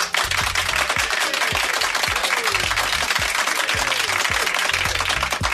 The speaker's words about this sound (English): Round of applause to everyone working from home.